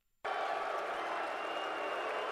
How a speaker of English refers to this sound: They're even booing themselves.